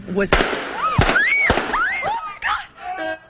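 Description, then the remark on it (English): Sharp, loud gunshots crack, about three bangs in quick succession, suddenly interrupting a live TV interview with a local Chamber of Commerce executive on August 26th, mixed with high-pitched panicked screams that rise and fall between and after the shots. “last August 26th when her live interview with a local Chamber of Commerce executive was suddenly interrupted by gunfire.”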